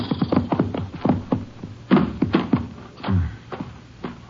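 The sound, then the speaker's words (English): Hooves clip-clop steadily as horses walk, ridden by a sheriff and a companion following a suspect's trail, the hollow knocks overlapping in an uneven, loping rhythm, clear with no voices. “Sheriff Caldwell and I picked up the trail and followed it by horse.”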